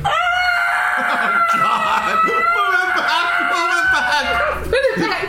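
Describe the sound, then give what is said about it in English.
A voice performs a shrill, sustained creature-like scream, wavering and strained, with squawking, rooster-like shrieks near the end, loud over a few seconds. “And as you put it back, the scream continues.”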